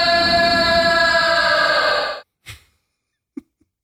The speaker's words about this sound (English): Goat. Correct.